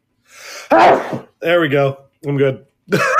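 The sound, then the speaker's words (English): A single loud, explosive sneeze bursts out after a brief breathy intake. A voice then speaks a few short phrases. “I got a hell of a sneeze, so I'm glad that I could hold that in for as long as I did.”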